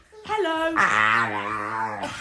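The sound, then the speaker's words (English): A pit bull lets out a drawn-out, two-part vocalization, a rising whine sliding into a sustained tonal howl. It sounds almost like a spoken "hello" and is fairly loud. “because these are British people, the dog has a British accent when the dog says hello.”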